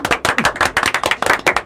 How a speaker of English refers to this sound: Real clap, no fake clap.